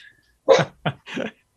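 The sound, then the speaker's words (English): A dog barks three times in quick succession, fairly loud, with short gaps between each bark and no talking underneath. “Well, you're okay because I got barking. I got my dog with me as well.”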